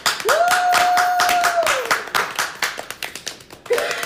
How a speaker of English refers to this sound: Clap it up.